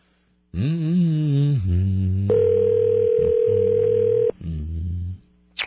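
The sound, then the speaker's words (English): A steady, buzzing telephone dial tone on a shared phone line holds for about two seconds, fairly loud, with low murmuring voices or line noise just before and after it. “We have a weird shared phone thing here. Do you want me to hang it up and pick it back up?”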